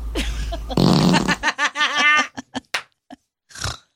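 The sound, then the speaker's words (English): A loud, wet-sounding fart sputters for about a second, followed by bursts of laughter and a few short, sharp noises trailing off. “Oh, ew, that one's juicy. That was wet.”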